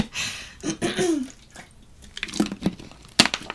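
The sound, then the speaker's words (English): Someone drinks water: a few wet sips and gulping swallows with faint liquid sloshing, ending in a sharp click or clearing of the throat. No one speaks. “Sorry guys, let me drink water real quick.”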